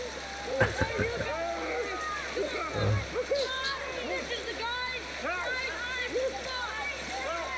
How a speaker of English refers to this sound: He just dives in.